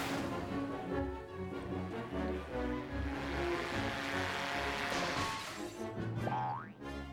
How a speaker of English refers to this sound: This thing with the tiny planes flying at them would not only be reused in the Batman animated movie, Mask of the Phantasm, but also in one of the first episodes of the Superman animated series.